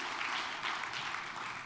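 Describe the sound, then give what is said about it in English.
A crowd applauds together, a steady wash of many hands clapping at once, sustained and fairly loud for the short stretch with no voices over it: a hand clap of praise to the Lord as people are being seated in the evening, on Independence Day. “Give the Lord a good hand clap of praise as you're being seated tonight.”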